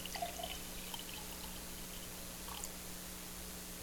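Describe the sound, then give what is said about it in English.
Water being poured into a glass, a soft, steady liquid splash with a few brief drips, fairly quiet against a low background hum. No one speaks. “So this is a glass of water.”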